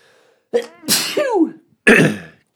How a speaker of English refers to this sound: I'm going to sneeze.